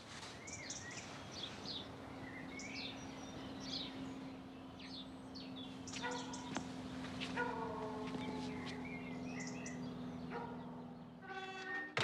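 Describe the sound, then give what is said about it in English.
A train rumbles steadily past a location close to the airport in Paris, with shrill tonal squeals or horn-like blasts rising midway and again near the end, while birds chirp faintly early on. “This location was so noisy because it was close to the airport in Paris. We had some trains and some airplanes.”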